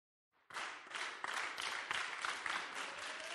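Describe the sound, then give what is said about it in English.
A home fellowship group clapping together, a steady wash of many overlapping hand claps that starts abruptly and holds at an even, fairly loud level, with no voices over it. “Our home fellowship really likes clapping for things.”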